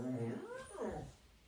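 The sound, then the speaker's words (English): A dog whines in a short, high, nasal cry that rises and falls in pitch, with a second wavering whine following right after. “Thank you, dog.”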